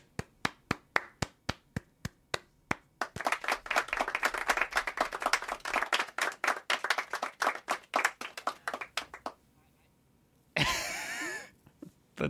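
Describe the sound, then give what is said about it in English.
A small group claps, starting with a few sharp separate claps that build into brief, quick applause, then fade out; a short burst of noise follows after a pause. “Small bit of applause there at the end.”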